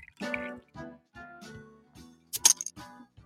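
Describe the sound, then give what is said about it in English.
A series of short, wet sips of Star Destroyer, a dark golden 8.6% ABV beer, with low throaty swallowing tones between them and a brighter, louder slurp near the end. No talking. “Hold on, let me sip this thing.”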